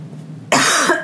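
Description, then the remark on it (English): A single loud cough bursts out after a brief quiet moment, harsh and breathy, with a rough rasp trailing off at the end. “Excuse me as I cough.”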